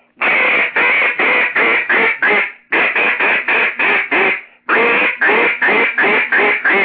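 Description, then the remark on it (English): A double-reed duck call blown in three quick runs of loud, raspy, growling quacks, each run about five or six notes, clear with short pauses between runs. “Now, if you want to do what I call a growly duck, that's where you're a mean, pit bull out there, and he's got you cornered, and you know what they sound like when they got you cornered, ah, like that.”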